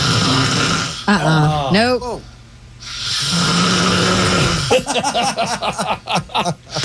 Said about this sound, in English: … is the worst snorer on the face of this earth